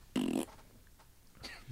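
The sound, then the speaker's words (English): A short, loud, buzzy fart sound effect lasting about a third of a second, followed after a pause by a fainter, brief rasp. No one speaks. “The fart was the ether?”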